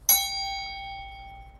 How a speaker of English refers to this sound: Time for the bell.